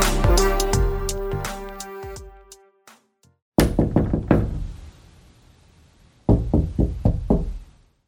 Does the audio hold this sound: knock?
yes